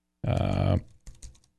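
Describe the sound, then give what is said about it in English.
Typing on a computer keyboard while searching for something: a dense, loud burst of key clatter, then a short pause and a few scattered keystrokes that fade out. “Wrong keyboard. Let me see if I can find something on that.”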